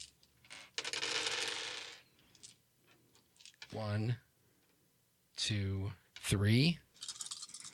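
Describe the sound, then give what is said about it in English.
A burst of dice clattering across a hard tabletop as an attack is rolled in a tabletop game, a quick rattling tumble lasting about a second, followed by short bursts of voices talking. “Let me roll the attack on them first, because they don't get to defend, because it's the monsters go first.”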